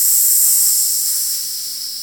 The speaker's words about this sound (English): Psst. Was that like an iron? Yep. Like steam coming out of an iron.